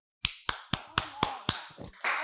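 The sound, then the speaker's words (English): Six sharp, evenly spaced hand claps in a steady rhythm, each crisp and loud, ending with a brief burst of hissy noise. No voices are heard. “Yeah. Applause.”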